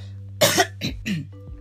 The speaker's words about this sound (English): And I didn't have my apple cider vinegar warm this morning, so that might be why I'm coughing.